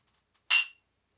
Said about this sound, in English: How about that? I didn't spill a bunch all over myself. I figured out how to clink between shows. Haven't figured out how to speak between shows, but clinking, I've got that.